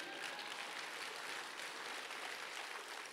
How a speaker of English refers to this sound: Oh, yeah, you can clap on that one.